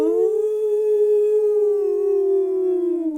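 A single long wolf howl sound effect, loud, holding one steady tone for about three seconds before dipping slightly in pitch as it fades at the end.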